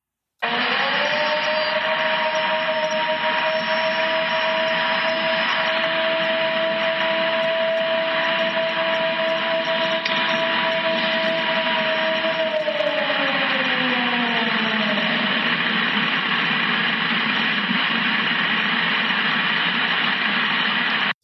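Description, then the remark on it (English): A single long, drawn-out howl holds a steady mid pitch for many seconds, then slides downward and fades, all over a constant loud hiss of background noise. “Okay, that was the first one, and then you sent me the second one, which was the clip of just one howl that was going on for, 15, 20 seconds.”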